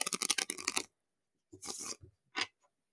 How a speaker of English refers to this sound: So let's shuffle the deck again.